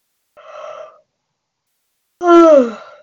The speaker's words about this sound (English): Big yawn on that one.